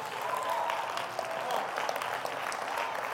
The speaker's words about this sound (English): All you got to do is just start clapping your hands and flopping your chops.